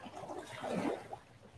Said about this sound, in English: What can you hear? I know the waves are loud, but what else do you hear?